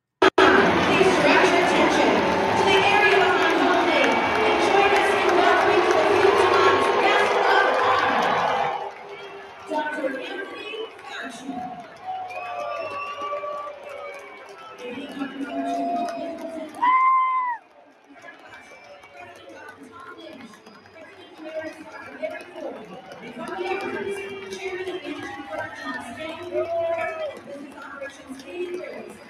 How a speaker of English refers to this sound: There's booing, which is funny.